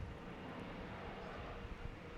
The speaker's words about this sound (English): I'm going to let this plane go by. Yeah, yeah. Live and direct from Germantown. We're out here in Germantown where the planes love to just fly over all day.